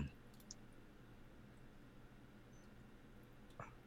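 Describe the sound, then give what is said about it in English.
A few sparse, soft clicks of keys on a computer keyboard, spaced seconds apart, over a steady low background hum with no talking. “So I hit on my keyboard WP hit reroll.”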